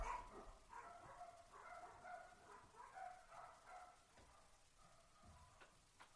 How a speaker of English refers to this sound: Still barking. Woo! Woo-hoo! They're still barking.